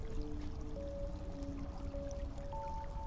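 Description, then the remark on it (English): Water flows and trickles steadily in a cave, with a low rushing wash and faint gurgling, ringing tones running throughout. Fairly quiet and continuous, with no voices. “The silence of the cave and the water slowly becomes louder and louder. And you start to hear a roar. The sound of water pounding on rocks below.”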